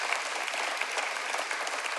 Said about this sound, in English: By the way, that's worth applauding for, I think.